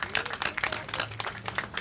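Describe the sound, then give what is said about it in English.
A crowd at a Lansing community event honoring Malcolm X applauds, dense overlapping claps forming a steady crackling wash of sound throughout, with no voices over it. “So please give yourself a round of applause for being here today.”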